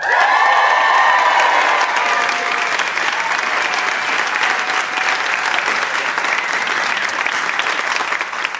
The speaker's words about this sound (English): And finally, and I hope this gets the biggest round of applause, we'll be joined by U.S. Women's National Team and Washington Spirit star Allie Krieger.